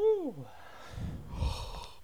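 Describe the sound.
A brief voiced murmur, then rumbling breaths blowing into the microphone and a quick nasal sniffle, ending in a sudden short burst of noise.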